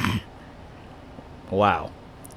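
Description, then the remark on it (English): A single short cough bursts out in the middle of a spoken introduction, fairly loud, after a brief noisy sound at the start and quiet in between. “I like your style, just not …'s style of coughing”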